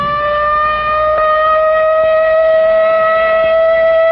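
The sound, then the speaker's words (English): A civil defense air raid siren sounding in a practice drill wails steadily at full volume, a sustained, unbroken tone that holds its pitch throughout with no voices over it. “But tomorrow, this siren may mean the real thing.”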